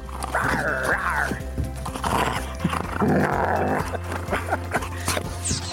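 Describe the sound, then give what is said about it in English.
Doberman dogs growl and grumble in long, continuous rumbling bursts, with higher whiny tones rising in and out over a steady low hum. “Not only have these dogs hit the big time, but with 6 million hits worldwide, these videos have been changing perspectives about the Doberman.”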